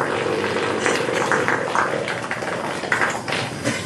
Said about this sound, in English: Her smile gets bigger as the fart goes on.